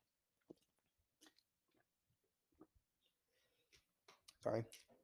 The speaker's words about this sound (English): I'm going to take a little sip of my water real quick. Hold on.